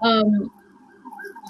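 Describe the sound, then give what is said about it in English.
A loud, blaring emergency siren blasts outside in Harlem, New York, for a moment, then drops to a quieter, wavering wail that carries on in the background as the vehicle moves off. “Sorry, there's a huge siren outside.”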